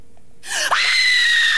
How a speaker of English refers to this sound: Alexa's screaming at me now.